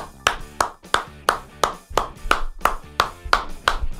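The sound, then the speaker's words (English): A single pair of hands claps politely in the style of Wimbledon tennis applause, at a slow, steady pace, about ten or eleven crisp claps evenly spaced over a few seconds, with no voices. “a Wimbledon tennis clap.”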